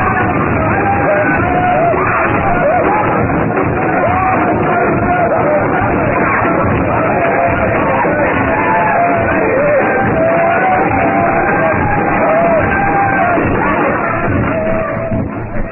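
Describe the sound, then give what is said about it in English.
A frenzied crowd of natives, dancing as a hut collapses, shouts and yells continuously, many overlapping voices rising and falling in a loud, dense roar with no pause throughout. “Their shouts and yells carry to the jungle,”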